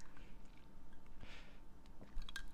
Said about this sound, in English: Let me take a sip of my coffee, though, first, because, you know, I just need it. I just need it.